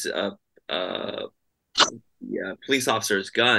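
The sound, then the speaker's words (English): A person sneezes once, a sudden loud burst, between stretches of conversational speech. “Bless you.”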